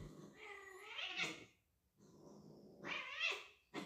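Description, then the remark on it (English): Cats yowl and meow in two drawn-out, rising cries separated by a short pause, fairly loud, like an agitated complaint during rough play, as the cat Pablito bites another cat's leg too hard. “Pablito is biting his leg and he doesn't want to be bitten so hard.”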